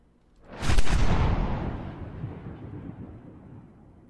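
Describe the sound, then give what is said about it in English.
A single deep cannon boom, Rue's cannon, bursts out loudly, then rolls away in a long, low rumbling tail that fades over several seconds. No one speaks. “Rue's cannon fires.”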